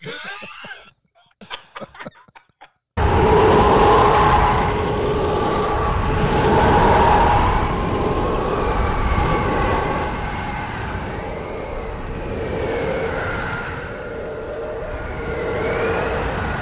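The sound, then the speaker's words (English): A ferocious, train-like roar of tornado wind circling around an airplane hangar erupts after a few quiet seconds, with eerie wavering howls and whistles riding over the dense, continuous rumble as it surges and swirls. “They're in an airplane hangar, and I don't know the whatever city, but it's a tornado that is basically circling around the airplane hangar. All right. Those are tornado winds I just saw.”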